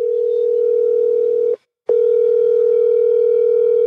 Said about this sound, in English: I'm calling at dinner time in Louisville right now.